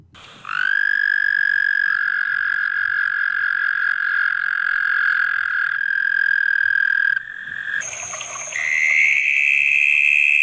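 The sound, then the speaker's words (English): A loud frog call rings out as a steady, buzzing trill for several seconds, then breaks off and shifts to higher-pitched croaks near the end. No one speaks. “it's now illegal to harvest these frogs, but Peruvian and Bolivian locals still known to do so”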